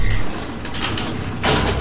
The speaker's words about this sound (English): Yeah, there's just a panel to the right that is super familiar to you guys, and you press the panel and the door opens.